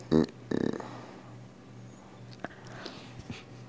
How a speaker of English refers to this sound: I can't. Stop yawning. I can't make it stop.